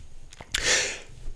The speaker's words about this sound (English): I had two different, hold on, I'm gonna sneeze. Hold on. Excuse me. Excuse me again.